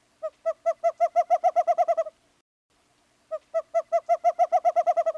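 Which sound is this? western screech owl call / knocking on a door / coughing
western screech owl call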